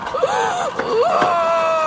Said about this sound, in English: I shrieked and dropped to my knees.